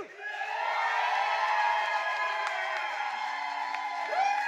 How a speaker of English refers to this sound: And all you have to do if you want the negative to win is cheer louder than the first cheer. So, we're going again.